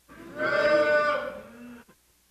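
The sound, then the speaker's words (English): An audience moos together in imitation of cattle after being asked to say moo when they find 2 Thessalonians chapter 2, one loud drawn-out call lasting under two seconds and then fading to quiet. “When you get there, say moo.”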